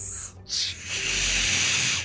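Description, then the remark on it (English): A person hisses through their teeth in imitation of a snake, a brief breathy burst followed by a longer, steady sibilant hiss that holds for over a second. “I was about to do the hiss, everyone.”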